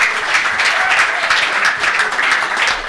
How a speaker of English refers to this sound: And finally, please give a huge round of applause to BBC Radio Newcastle's Matthew Raisbeck, the voice of the commentary on match days.